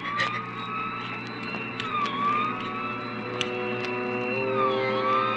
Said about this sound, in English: We both heard the siren then. He looked quickly in the rear vision mirror.